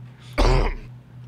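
A single short, throaty cough bursts out clearly, lasting about half a second against a quiet background with a low steady hum.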